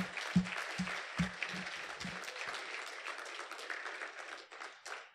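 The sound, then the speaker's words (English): A church audience breaks into sustained applause as a morning clap offering to God, dense overlapping claps, with a few louder, rhythmic claps near the start over the broad wash of clapping. “Let's just give God a clap offering this morning.”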